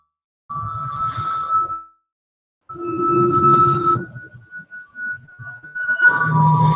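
An old-time western-style tune plays in bursts: long, steady high tones like a whistled melody over a rumbling low backdrop, broken by a brief silence near the start.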